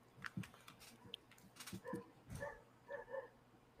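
Dogs bark and yip faintly in the background, a scattering of short, high bursts that cluster toward the end, with some light clatter and no talking.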